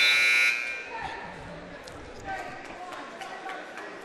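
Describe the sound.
A loud, harsh buzzer blares for about half a second at the start, then cuts off, leaving noisy ambience with scattered voices and thumps. It is the period-ending buzzer at a wrestling match, sounding as time expires while a wrestler scores a two-point takedown.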